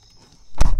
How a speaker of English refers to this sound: I'm going to close this door also.